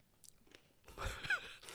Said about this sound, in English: While you're chewing that, I'm trying to open up this packet for this jerky, and I'm going to take a bite of this.